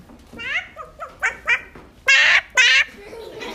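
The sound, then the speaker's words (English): A child's voice imitates a chicken's alarm call, warning of an owl in the hen house: a few short, rising squawks, then two loud, strained, sustained cries, with brief pauses between. “Okay, young lady, you need to tell the chicken that there is an owl in the hen house.”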